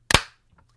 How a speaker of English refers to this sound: Let's clap. Okay. All right. Ready, ready, ready. Mm-hmm. 3, 2, 1.